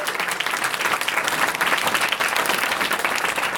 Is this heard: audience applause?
yes